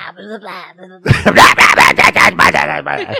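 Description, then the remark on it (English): A human voice imitates the Harry Potter character Hagrid grunting: a brief low hum, then a loud burst of rapid, harsh, gravelly grunts and snarls in a quick, jabbering rhythm of about eight pulses. “And she, no, most of the time it just sounds like he's grunting.”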